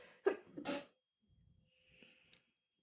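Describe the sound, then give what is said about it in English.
A single sharp sneeze with a quick inhale before the burst, slightly off-mic, followed by a couple of seconds of faint rustling and breathing. “Thank you for not sneezing into the microphone.”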